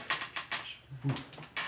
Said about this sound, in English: Squeaky chair. Can have that fun squeaky chair audio to edit out.